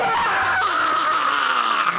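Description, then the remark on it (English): A man throws his arms up and lets out a loud, sustained, strained scream of rage that holds steady for about two seconds, with no other talk around it. “And I've still got my readers there on the tip of my nose, but you can just see I throw my arms up and I just scream out in rage.”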